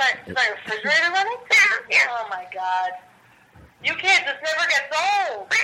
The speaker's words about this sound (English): We have a cat that does prank phone calls for the show. Is your refrigerator running?